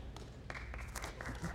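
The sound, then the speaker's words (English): A short burst of scattered clapping from the audience at Springs Community Church, soft and uneven, with individual claps overlapping into a light patter for a second or so. “You can clap for that.”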